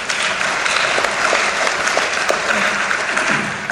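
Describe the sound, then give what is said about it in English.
A crowd applauds Minnesota State Representative Jeremy Kalin, a dense wash of clapping hands at a constant loud level with no pauses and no voices breaking through. “I would actually ask you guys not applaud until we actually do something about it in the legislature to end the cycle of poverty and hunger in Minnesota.”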